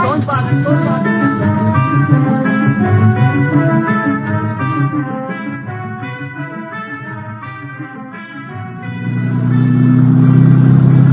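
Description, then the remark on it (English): A car engine revs up loudly and pulls away, its pitch rising and falling through the gears before settling into a steady, low rumble near the end. “I head out in his auto.”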